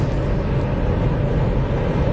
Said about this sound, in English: Nah, that's a car driving by.